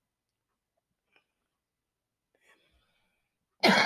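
After a near-silent stretch with a few faint breathy mouth sounds, a single loud early-morning cough bursts out abruptly at the very end.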